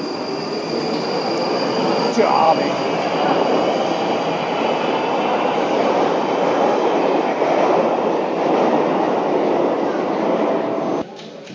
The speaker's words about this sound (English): We are currently waiting for a train, which is here.